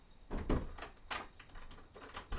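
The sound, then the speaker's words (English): A front door being opened: a short run of knocks, rattles and clicks from the latch and handle, with a firmer clunk at the end and no voices. “I think there's someone at the door, Mom. Shall I get it?”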